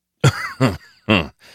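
Three harsh, raspy coughs in quick succession, fairly loud, each a short rough burst, with a fainter fourth one trailing off at the end.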